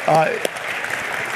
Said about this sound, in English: And actually, can we give them a round of applause for putting this all together? I mean, what a great job by everyone.